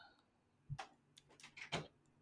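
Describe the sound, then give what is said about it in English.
A few faint wooden creaks and knocks from a house creaking in strong wind, arriving as short irregular bursts over about a second, with no talking. “Ooh, very windy. My house creaked. You heard that.”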